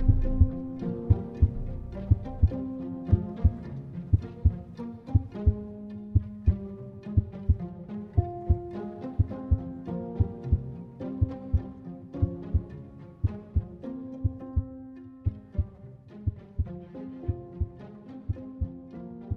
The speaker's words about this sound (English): I felt that I must scream or die, and now again hark louder, louder, louder, louder. Villains, I shrieked, dissemble no more. I admit the deed. Tear up the planks. Here, here is the beating of his hideous heart.